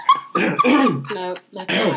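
A dog lets out a quick string of loud barks and drawn-out, yowling vocalizations, three or four bursts packed into a couple of seconds with brief gaps between them.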